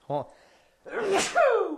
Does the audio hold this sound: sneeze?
yes